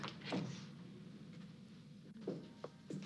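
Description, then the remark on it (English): The sliding front door of an apartment rumbles quietly along its track, with a couple of soft scraping swishes as it moves open or shut against a low background hum. “Is the front door to her apartment a slidey door?”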